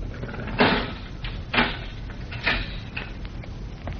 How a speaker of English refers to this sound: They stop in front of it. The guard unlocks the heavy steel door.